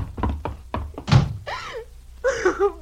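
A door thuds shut amid a quick run of heavy clunks and knocks as it is locked, followed by a voice calling out loudly.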